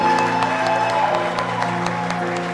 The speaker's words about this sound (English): But clap your hands for your woman pastor. Your woman pastor. Who? Oh, let your hand clap be louder for her.